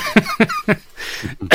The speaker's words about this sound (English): Excuse me. Getting over a dry cough.